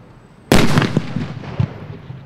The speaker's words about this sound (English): If you're safely out of the path of the storm, fireworks may be in your immediate future. Safety experts are urging caution during these 101 critical days of summer.